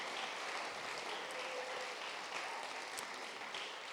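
An audience applauds steadily, a dense, crackling wash of many hands clapping that holds at an even loudness for the full four seconds without a break, and no voices come through.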